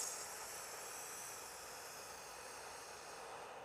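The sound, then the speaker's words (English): A slow, steady inhale drawn through pursed lips, as if through a straw, during a paced breathing exercise; a soft airy hiss that holds evenly for about four seconds with no talking over it. “you would basically wrap your lips around the breath, the inhale and the exhale. So it's kind of like breathing in through a straw.”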